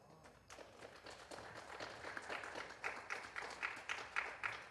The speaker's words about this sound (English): I'm glad I got one golf clap today. We're good. I'm joking.